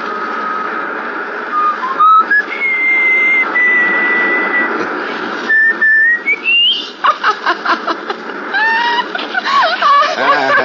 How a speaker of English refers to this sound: Can you whistle? Sure. Whistle. Yeah, I know just the tune.